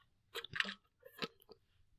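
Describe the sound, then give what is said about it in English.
A quiet sip from a drink: a couple of short wet slurping bursts, then a soft swallow and faint mouth clicks, with no one talking. “Let me get a sip, child.”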